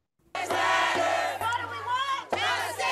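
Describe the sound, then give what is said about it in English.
A large crowd of protesters in Kansas City on Sunday, after 16-year-old Ralph Yarl was shot, shouting together in loud, rhythmic chant bursts, voices overlapping in a dense roar that pauses briefly between phrases, with a steady low hum underneath. “The Kansas City community protesting on Sunday after 16-year-old Ralph Yarl was shot as he was trying to pick up his siblings last week.”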